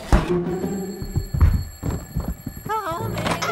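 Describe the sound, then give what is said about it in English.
An alarm clock rings with a steady, high metallic tone, mixed with heavy thunks and a burst of warbling, wavering chirps near the end. “it's just your alarm clock ringing.”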